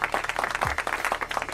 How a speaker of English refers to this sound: Yeah. You know, I hear the applause, the applause sound effect.